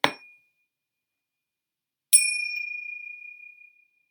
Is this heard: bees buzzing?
no